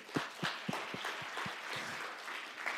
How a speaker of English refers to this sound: So everybody just take a minute right now and go, woo! Woo! Clap your hands.